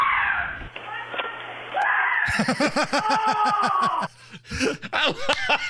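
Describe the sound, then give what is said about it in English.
A man lets out repeated high, strained screams and yelps in quick bursts, loud, after a rat hopped on him on a front porch and he runs into the house, with breathy gasps between them and a brief thud partway through. “He's still screaming even though the rat has gone away.”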